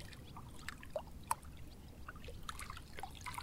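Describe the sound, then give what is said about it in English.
Gentle water of the Brisbane River (Maywa) trickles and laps steadily, with small splashes and drips scattered throughout, one sharper plop standing out; quiet, no voices. “Today, the Maywa, or the Brisbane River, is going to wet you.”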